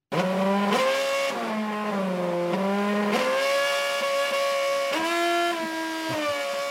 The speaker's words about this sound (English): This was at Bathurst. They decided it was a great idea to play the national anthem with a car playing it. I'm not going to play the whole lot because my ears were screaming by the end of it. This is how they did it.